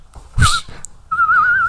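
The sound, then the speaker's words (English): Someone whistles with their lips: a short, breathy puff of a note, then a steadier, slightly wavering tone held for about half a second. Fairly loud, with no talking. “I mean, I can't whistle with my fingers, but I can.”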